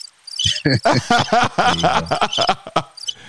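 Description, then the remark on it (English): A cricket sound effect chirps in quick, high repeated pulses, clear, with a burst of busy, voice-like sound mixed through the middle. “You got a cricket sound effect.”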